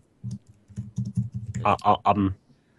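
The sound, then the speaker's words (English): Rapid, uneven tapping on a computer keyboard, a run of soft muffled keystrokes that grows into a louder, denser flurry before stopping abruptly, with a faint voice-like murmur near the end. “That's some silence. Yeah, I was listening to you type.”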